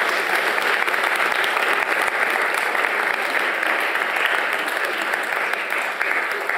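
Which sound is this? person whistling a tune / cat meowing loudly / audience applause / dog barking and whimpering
audience applause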